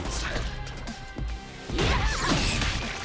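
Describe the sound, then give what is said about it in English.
In a fighting video game, an exploding claw knocks Chun-Li down: a burst of crashing and smashing game effects hits hard, followed by a loud, dense impact with sweeping, chirpy tones layered over a rumbling low end. “And now you see the claw actually explodes and knocks Chun-Li down and gives potentially a setup as well.”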